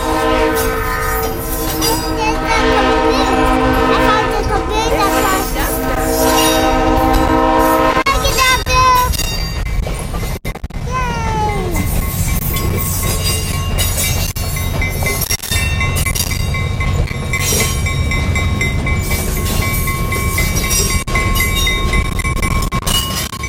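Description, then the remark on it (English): The Thomas the Tank Engine train rumbles steadily down the tracks as people walk toward the roundhouse, with a loud sustained horn blast in the first several seconds, then a continuous low rolling roar and faint squeals and clatter from the wheels. “Okay, just as we were walking towards the roundhouse, Thomas came rumbling down the tracks.”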